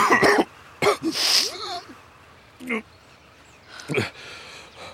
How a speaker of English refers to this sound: I'm coughing up blood again